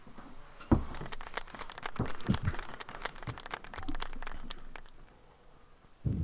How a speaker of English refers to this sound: That was our cheap soundboard. I appreciate it. It was a solid applause.